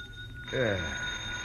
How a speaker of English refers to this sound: But the jackhammer didn't stop. I switched on the light and looked at my watch. It was 1 in the a.m., and the phone on my bed table was screaming for an answer.